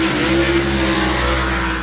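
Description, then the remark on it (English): A race car engine screams at high speed during daytime testing, the car moving sideways at over 100 miles an hour: a loud, steady roar with a sustained pitched whine running through the full stretch, unbroken, with no voices. “This is daytime testing. No dryout. It's just the car moving sideways.”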